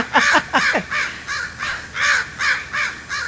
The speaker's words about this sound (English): Are those crows or jays? Crows. Crows. So I went outside. I mean, it was so loud, my neighbor across the street also came outside to see, because it just wouldn't stop.